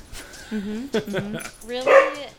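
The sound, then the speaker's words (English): A dog in the town of Holland in the Midwest barks several times in short, whiny yips, ending with a louder, higher-pitched bark, with no talking. “So dogs are a little, town of Holland.”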